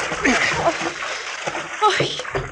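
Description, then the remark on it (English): Busy water splashing and sloshing as a woman goes over the side of a boat and tumbles heavily into cold water, with brief vocal murmurs and effort sounds mixed in over a couple of seconds. “You must be freezing in that water.”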